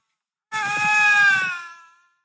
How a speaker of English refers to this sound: You gotta hear of two lynx. This is two lynx having a conversation.